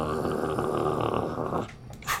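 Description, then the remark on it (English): A voice imitates a wolf's growl, a low rough rumble held for about a second and a half, fairly loud, then trailing off into a short breathy snort. “Wolf is just sort of...”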